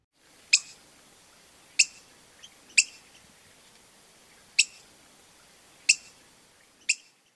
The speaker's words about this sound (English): First up is the black-headed grosbeak. The typical call is a sharp spink.